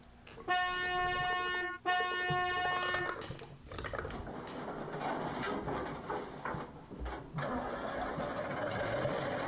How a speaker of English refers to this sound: Let's start the van.